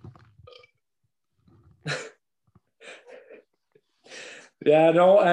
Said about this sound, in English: Sorry for burping the mic, folks, again.